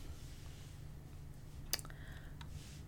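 A few sparse, sharp clicks as someone types on a computer keyboard to look up a website address, one louder tap among fainter ones, over a steady low electrical hum. No voices.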